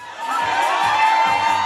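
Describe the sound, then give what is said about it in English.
A dense crowd of women screaming and cheering at once on a cruise in 2010, as Richard gets on a table to dance for them; high-pitched shrieks layered into a loud, sustained roar that stays constant throughout. “Here's a Cruise video from 2010. All that screaming, it's because Richard got on the table to dance for them.”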